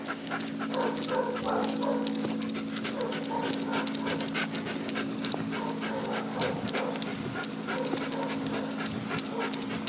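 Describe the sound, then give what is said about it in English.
A dog pants steadily and rapidly, with quick rhythmic breaths running throughout over a low constant hum in the background. “Plus, there's like this dog hitching post out there that you can tie the old creature up to.”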